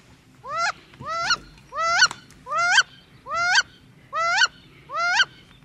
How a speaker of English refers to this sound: we double-checked on that one, and we all agree that that is... wood duck. The wood duck, right. All right. And you hear one real close and one far away, so...